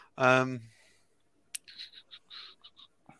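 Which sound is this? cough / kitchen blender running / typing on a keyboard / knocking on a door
typing on a keyboard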